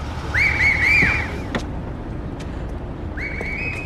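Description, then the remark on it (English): Shrill whistles blow in three quick warbling blasts, then a longer rising whistle sounds near the end, all over a steady low rumble of street traffic. “Those are the whistles. It's for us.”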